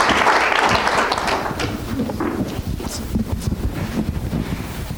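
A crowd applauds steadily for several seconds, a dense, loud wash of many hands clapping with no clear rhythm, slowly easing slightly in intensity toward the end.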